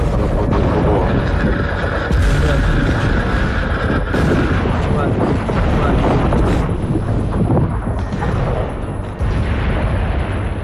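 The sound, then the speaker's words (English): Repeated heavy blasts from Russian missile strikes in Kyiv, Ukraine, about nine huge explosions at around 4 o'clock in the morning, boom through a loud, continuous rumbling roar, several sharp impacts landing a couple of seconds apart amid dense, chaotic noise. “As Russian missiles strike”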